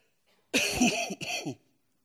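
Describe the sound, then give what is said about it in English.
A loud cough with a raspy, throaty burst, followed by a short pause and a second rougher hack, then silence. No one speaks. “The cough has not been doing well the last couple of days.”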